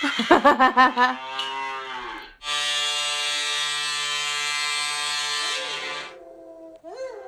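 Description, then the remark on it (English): A cow moos loudly, a few short throaty grunts followed by one long, drawn-out bellow that tapers off, with a brief rising call at the end. “Every time I try to eat, play the cow one, then I'll stop eating.”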